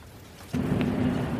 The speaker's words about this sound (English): It's a really big storm, isn't it?